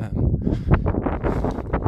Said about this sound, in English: I mean, I can't even imagine if you can even hear this at this stage. It sounds like it's quite windy, but it might just be the sheer speed at which I'm walking home.